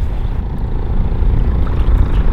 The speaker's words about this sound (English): Right when we're filming an interview talking about how excited we are about the rest of the river and how great it is to feel like we're kind of past this crux, a big motorboat comes swinging up right next to us.